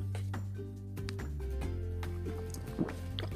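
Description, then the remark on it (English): Wet gulping and sloshing as someone swigs water, with small liquid clicks and drips over a low, steady hum in the background. “Take a swig of that water.”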